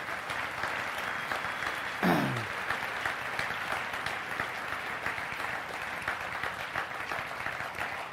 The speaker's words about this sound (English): They're sitting over here. Can we clap for them right now and say thank you?